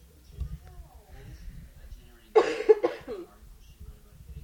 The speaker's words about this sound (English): Sorry if you're watching the live stream, I'm like swinging the mic around so you don't hear me coughing that much on this recording, and so you don't hear me chewing.